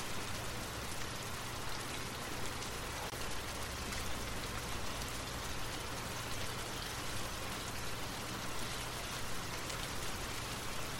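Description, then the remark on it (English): Steady rain falls continuously, a dense, even hiss of drops pattering on a surface with a low rumble beneath, holding a constant moderate level throughout with no voices. “The rain will continue to fall, nurturing your dreams and guiding you to a night of deep and restorative rest.”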